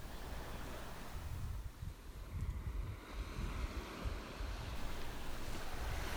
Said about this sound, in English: At your feet, the ocean waves move rhythmically in, out. In, out.